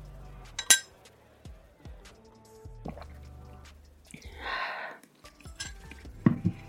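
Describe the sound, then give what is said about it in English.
Wine glasses clink together in a toast as drinks arrive, a bright, ringing tap, with scattered clatter of dishes and cutlery and a brief muffled voice in the background. “Cheers to us.”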